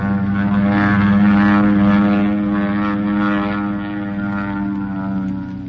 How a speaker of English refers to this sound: Airplane. Well, it might be ours. Yeah, it might be, but get under cover. That's no plane of ours. That's a Mitsubishi if I ever saw one.